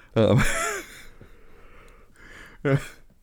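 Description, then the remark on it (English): A man lets out a long, voiced yawn with a rising then falling tone, trailing into a breathy exhale, followed a couple of seconds later by a shorter vocal sigh. “is yawning.”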